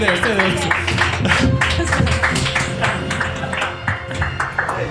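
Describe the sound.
An audience breaks into sustained applause, a dense wash of many hands clapping at steady loudness, with cheers and voices mixed into the crowd noise throughout.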